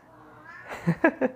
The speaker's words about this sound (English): My cat needs to stop. Hagrid, stop, Papa.